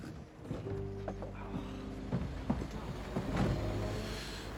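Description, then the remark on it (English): A heavy military truck carrying a group of soldiers runs with a steady low droning hum, punctuated by irregular clanks and knocks, moderately loud, with no voices. “And he finds himself in this truck amongst a bunch of random soldiers, really.”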